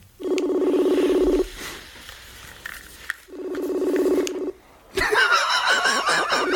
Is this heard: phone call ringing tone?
yes